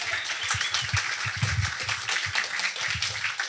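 A crowd applauds steadily for several seconds, a dense wash of many hands clapping at once with sharp irregular claps standing out, sustained at an even loudness throughout.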